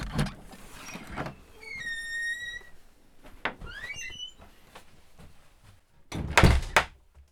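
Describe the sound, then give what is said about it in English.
A door is worked open and shut: several knocking thuds, a thin whining squeak and some chirping creaks, ending in a loud, rattling bang. No one speaks. “Every continent and climate has its own vocabulary and rhetoric of doors, as different as the languages of the people who open and close them.”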